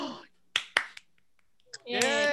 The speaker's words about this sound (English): Hey, I was snapping. Snaps. He snaps for the win.